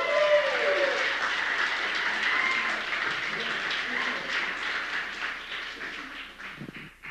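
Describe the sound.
A crowd applauds steadily for several seconds, a dense wash of clapping that stays loud and even throughout, with faint voices murmuring underneath.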